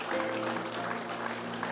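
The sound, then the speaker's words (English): An audience claps together to give God praise in a steady, dense wash of overlapping hand claps, continuous and evenly loud throughout, with a low electrical hum underneath and no clear voices. “I want you to clap again and give God praise.”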